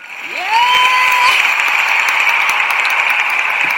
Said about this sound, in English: Do we need a round of applause for that? Oh, come on, please. Give me.